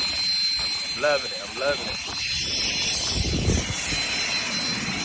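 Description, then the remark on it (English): Steady, loud roar of airplane engines on a runway, a broad whooshing drone with a high whine running through it, while a voice talks briefly over the noise. “I'm on the runway, like...”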